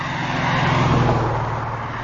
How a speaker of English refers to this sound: All right, just wait for these cars to go by.